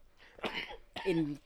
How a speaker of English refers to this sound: You're making me cough.